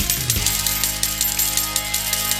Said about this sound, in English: Now, round one is, well, it's the bloody casino game with two pence coins that slide in and out over two different levels until, invariably, a couple of coins drop after an excruciating amount of time, as are rounds two and three.